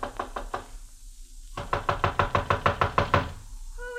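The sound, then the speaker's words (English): Knocking on the door of a houseboat, Dahabia number 10, anchored on the Nile: a few quick raps, a short pause, then a longer, steady run of about a dozen firm knocks. No one speaks. “I walked up the narrow awning-covered gangplank that led to the little deck and knocked at the door.”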